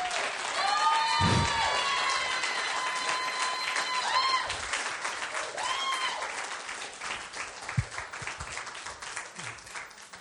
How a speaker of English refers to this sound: Would you just honor me and give me a second to get it back together? Could you just give God a huge shout of thanks and a round of applause?